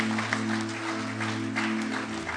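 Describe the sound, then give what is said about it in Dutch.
Steady audience applause for all the dads, a dense wash of many hands clapping at once, sustained and fairly loud over a low steady hum, with no one speaking. “Zullen we al onze vaders een groot applaus geven?”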